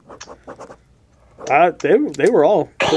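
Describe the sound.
A man talks casually, then a sudden loud, breathy burst like a sneeze cuts in at the very end, sharp.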